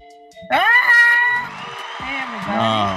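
A loud, sustained vocal whoop bursts out and rises in pitch, followed by further drawn-out cheering cries that waver up and down in tone.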